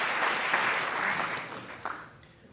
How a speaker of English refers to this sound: I wanna clap for that.